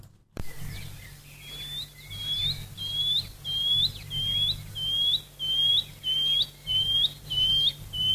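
A shining cuckoo calls repeatedly, a steady series of rising, upslurred whistles around a dozen times in regular rhythm, clear over a low background hum.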